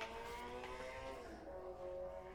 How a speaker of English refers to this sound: Oh, it's a motorcycle. What, your first time getting scared of a motorcycle?